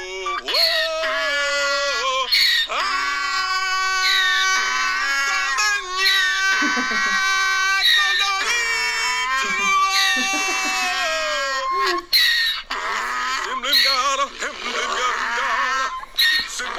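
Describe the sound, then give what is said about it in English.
A man sings loudly while a donkey brays along, its ears perked up, its strained, wavering hee-haws rising and falling repeatedly over the voice throughout. “and he did not expect this fucking donkey to join in.”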